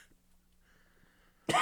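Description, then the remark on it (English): A single sharp, loud cough bursts out right at the end, after a stretch of near silence with only faint background hum. “Sorry, there was a cough there.”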